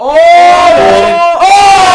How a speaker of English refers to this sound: Oh! The crowd goes wild. Get in there. That's a goal.